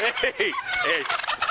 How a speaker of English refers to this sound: Hey, get back. You leave those turkeys alone. Hey. Go ahead. Get out of the road. They look awfully plump.